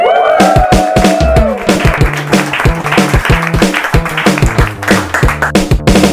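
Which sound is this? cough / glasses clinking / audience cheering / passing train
audience cheering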